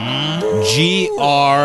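A cow mooing sound effect: a loud, drawn-out lowing call with a brief break in the middle before it swells again, heard on its own with no talking.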